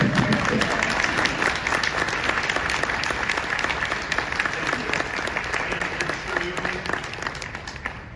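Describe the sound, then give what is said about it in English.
Sustained audience applause, a dense crackle of many hands clapping steadily at a fairly even loudness for the whole stretch, tapering slightly near the end. “You deserve a huge round of applause, so.”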